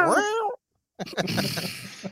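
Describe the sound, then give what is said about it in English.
A single clear cat meow with a bending pitch, from cats eating wires on a computer, followed by a brief silence and then a rough burst of voice and noise. “Goddamn cats eating wires on the computer.”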